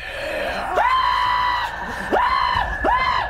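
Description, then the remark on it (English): A person voicing a frightened boatman lets out three frightened screams, each sweeping sharply up in pitch and holding there, the first one long and the next two shorter, loud with no other talk. “and just starts screaming and is fucking incredibly frightened.”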